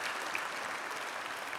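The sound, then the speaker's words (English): A crowd of people applauding the Lord, a dense, steady wash of clapping that stays at an even level throughout and fills the space. “Yeah, come on, let's give the Lord an applause.”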